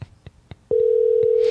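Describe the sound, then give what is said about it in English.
A few soft taps, like buttons being pressed, then a loud steady telephone tone that holds unbroken to the end, as a call is being placed. “Let's see if he answers the phone.”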